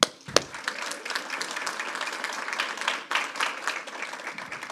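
A crowd applauds steadily, many hands clapping in a dense, even wash of sound that holds at a moderate level throughout, with a sharp transient near the start and no voices standing out.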